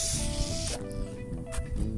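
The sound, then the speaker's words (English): A spray paint can hisses in a long, loud burst, then gives a few shorter spurts, with a steady low hum underneath. “That's what spray paint's for.”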